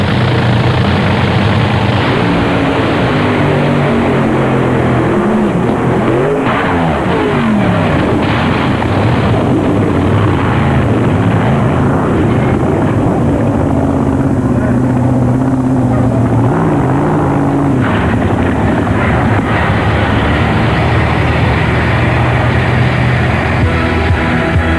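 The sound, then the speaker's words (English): A Top Fuel dragster at the 1990 NHRA Winter Nationals roars down the strip in a run that ends in a blowover, a loud, continuous, crackling engine blast that holds for the whole stretch, with a brief pitch sweep as it passes by. “believe that California driver Russ Collins was uninjured in this blowover incident”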